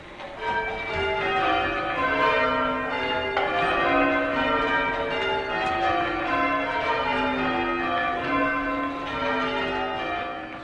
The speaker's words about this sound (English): It's meant to be a background sound. It's bells are ringing, oh yeah, I don't have to pay attention, but I should make my way to church now.